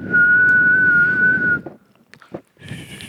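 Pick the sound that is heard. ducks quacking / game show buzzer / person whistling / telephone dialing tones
person whistling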